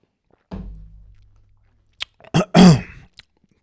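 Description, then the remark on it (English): Someone takes a quick sip of water: a soft low thump, then a few wet mouth clicks, a gulp and a short breathy exhale, with no talking. “Actually, I need a sip of water first.”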